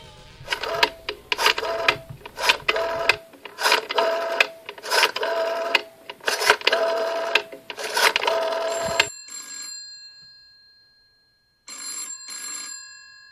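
A phone is dialed with a rapid run of clicky, clattering button presses, then a steady electronic ring tone sounds twice, separated by a short silence. Fairly loud, with no talking.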